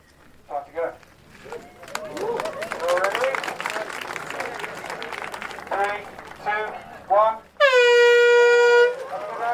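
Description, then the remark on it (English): A loud, sustained air horn blast starts a race, cutting through after a busy stretch of crowd noise, cheering and scattered voices, holding steady for about two seconds near the end as lined-up runners set off. “Everyone's lined up and the air horn has gone, and the first 100 people have actually ran, the rest of them are walking, and there's a cloud of dust as they pass by.”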